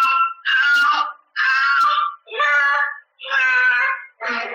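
A 2-year-old boy cries in five loud, drawn-out wails separated by brief gasping pauses, high-pitched and strained, sounding distressed as he struggles while a nanny restrains him and tries to force-feed him chicken pot pie, recorded on an at-home security camera. No words are spoken.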